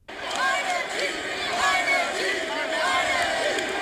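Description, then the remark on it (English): A huge stadium crowd at FedEx Field chants the backup quarterback's name, Heinicke, in unison, the two-syllable shout rising and repeating in a steady rhythm over a dense, roaring wall of voices. “or maybe he would have pulled the quarterback when he looked like horrible and you could just, you know, like, when the crowd's chanting for the backup.”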